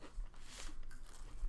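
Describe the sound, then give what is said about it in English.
Soft chewing of a green-colored piece of food being taste-tested, with a few moist crunches and smacks in quick irregular succession. No one speaks. “Chew it.”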